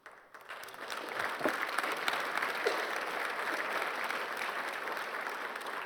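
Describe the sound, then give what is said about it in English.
An audience breaks into steady applause for the speaker, the dense crackle of many hands clapping swelling quickly and holding at an even, moderate level for several seconds. “I had to talk about it for 5 minutes before you get people finally clapped for me.”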